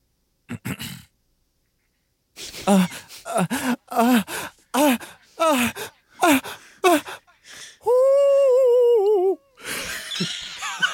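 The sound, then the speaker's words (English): A voice imitates a barn owl's screech through a megaphone: after a run of breathy gasps and groans comes one loud, sustained, buzzy, wavering cry lasting over a second. “making a sound like a barn owl through a megaphone.”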